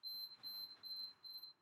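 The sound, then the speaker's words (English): A refrigerator's electronic alarm beeps in a quick, steady series of high-pitched tones, about four pulses, quiet, with no voices over it. “That's our fridge beeping.”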